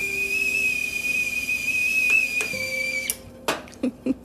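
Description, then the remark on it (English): A little red teapot whistles with a steady, shrill high tone that wavers slightly, then cuts off abruptly. A few sharp clinks and knocks follow as it pours into a coffee mug to make Nescafé in the morning. “And yes, I burn my finger every single morning, my cute little red little teapot pouring into my favorite coffee mug, XOXO.”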